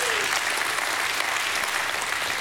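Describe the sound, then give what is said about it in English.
An audience bursts into sustained, dense applause, steady and loud throughout, with scattered voices calling out praise to God mixed into the clapping. “Somebody give God a hand clap and a shout of praise.”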